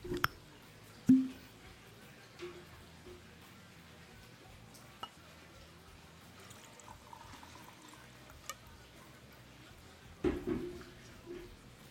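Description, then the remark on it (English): A 10-year-old Highland Scotch whisky, 43% alcohol by volume, is poured into a glass: a quiet continuous trickle with a few clinks of glass near the start and end, with no talking. “Let's pour a little bit here.”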